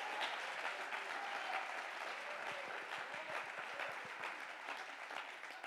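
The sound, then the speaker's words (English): A church audience claps their hands in praise during a sermon, in sustained, dense applause, with many overlapping claps forming a steady wash of sound and a faint rhythmic pulse emerging partway through. “Clap your hands and give them praise.”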